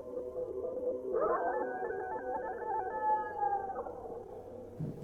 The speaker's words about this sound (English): And then we heard it again. The call of the Jersey Devil.